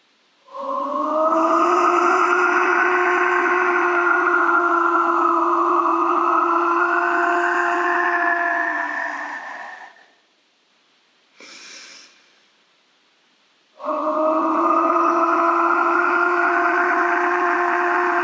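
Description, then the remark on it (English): Three ritual whistle blasts, blown with Boreas to clean off an altar space, with steady, layered breathy tones: a long first blast of several seconds, a brief short second one, then another long sustained blast, with no talking. “So 3 times, blowing our whistles with Boreas to clean off your altar space.”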